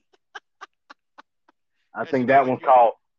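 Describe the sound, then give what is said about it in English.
A cell phone alarm ringtone plays as about six quick, evenly spaced tone pulses that fade steadily. A loud, wordless warbling vocal follows up close. “I think that one's called Midnight Dew. I think that's the one I heard on goddamn on the phones and shit.”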